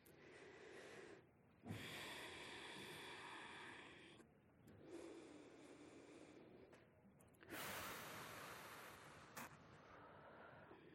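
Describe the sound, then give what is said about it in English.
Airy breathing in a guided relaxation exercise: three slow, deep breaths, each a long inhale followed by a fuller, louder exhale, steady and unhurried with no talking. “And let's just start by taking 3 long breaths together in and out.”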